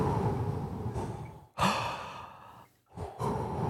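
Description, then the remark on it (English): A voice mimics an eerie, sinister breathing-like soundtrack with slow, raspy exhales, broken by a sharp intake and a brief silence before the breathy drone resumes. No talking. “And a sinister soundtrack plays. And it almost sounds a little bit like breathing.”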